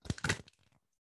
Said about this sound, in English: I'm going to shuffle them so that your listeners can hear like how smooth they are.